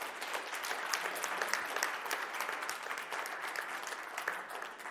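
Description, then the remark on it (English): A crowd gives thanks applause to the person who chooses the songs. It claps steadily for about five seconds, many hands in a dense, even patter at a fairly constant volume, with no voices on top. “So let's just give Thanksgiving claps for Mark.”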